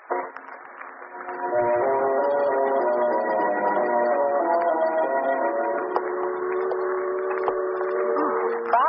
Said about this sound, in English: Not exactly a pleasant neighborhood. A foghorn doesn't help any either.